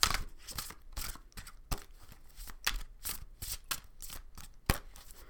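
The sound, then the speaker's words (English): Oracle cards being shuffled by hand, a steady series of crisp riffling bursts and soft slaps, repeating at an uneven pace with no talking. “So let's shuffle a little bit.”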